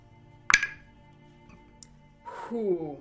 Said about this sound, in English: So you can hear little twings and twangs as she pops open the top of the music box and begins trying to repair it.